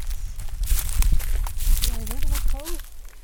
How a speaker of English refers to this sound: Walking through dry leaves.